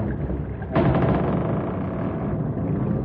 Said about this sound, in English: Listen to that trestle strain. Pressure is being applied to the center piers.